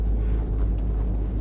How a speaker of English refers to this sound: Hold on. I'm trying to back out of this fucking driveway.